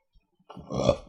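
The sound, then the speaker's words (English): A single drawn-out burp rumbles up after a brief pause and lasts just over half a second, rising to a loud peak before trailing off. No one speaks. “Ew. Bless you.”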